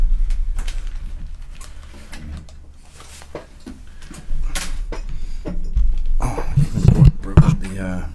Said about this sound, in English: Close the door.